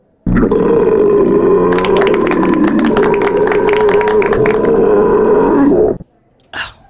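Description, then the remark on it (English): A single long, loud belch drawn out for nearly six seconds, deep and rumbling with a crackly, rattling texture midway, ending abruptly followed by a brief breathy exhale. “Listen to that hang time.”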